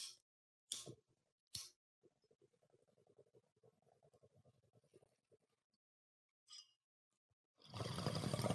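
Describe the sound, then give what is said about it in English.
A few sharp lighter clicks, then a steady low gurgling of water bubbling for several seconds through a Pot Smoking Mom bong holding a bowl of Chem D from One Plant, followed by a quiet pause and a loud, breathy exhale at the end. “Well, I got a bowl right here in my little Pot Smoking Mom bong of Chem D from One Plant.”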